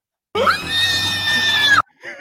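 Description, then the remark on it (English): A woman lets out a single loud, piercing high-pitched squeal held steadily for about a second and a half, shrill like a pig being slaughtered, cutting off abruptly before a brief murmur. “That sounds like a pig being fucking sent to slaughter.”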